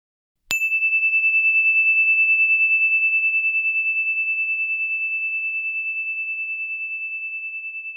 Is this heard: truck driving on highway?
no